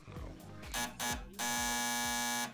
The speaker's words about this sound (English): Hello, this is Fred Stoller. Would somebody please buzz me in?